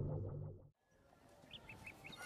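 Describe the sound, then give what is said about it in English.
A loud, harmonic squawk breaks off into a rough, noisy bed of clucking from giant undead chickens overrunning a planet, with a quick series of short, high-pitched clucks repeating near the end. No one speaks. “I can't go and find help because the planet outside is overrun by giant undead chickens.”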